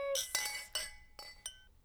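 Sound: wine glasses clinking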